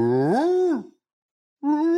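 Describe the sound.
A human voice imitates a hound's howl: a loud, drawn-out wail that rises and bends in pitch, then a pause before a second howl begins.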